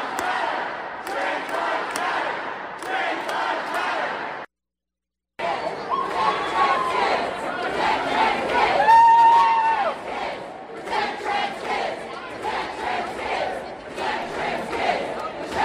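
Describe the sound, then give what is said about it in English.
A loud crowd of protesters at the Oklahoma State Capitol yelling chants in unison such as "protect trans kids" and "trans lives matter", a dense roar of many voices with rhythmic bursts, briefly cut to silence before the shouting resumes and swells. “Yeah, and they're yelling, protect trans kids, protect trans kids.”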